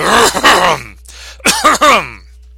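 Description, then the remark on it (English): Someone clears their throat in two gruff, voiced bursts separated by a brief pause, the first long and groaning, the second shorter and choppier. No words are spoken. “As Howard Stern would say, clear your throat.”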